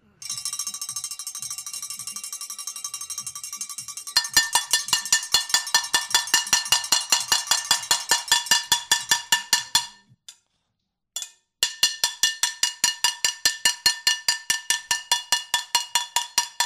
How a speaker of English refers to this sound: So I'm telling you, WPLG should be covering how we have our own pots and pans parade here on Good Morning Amigo.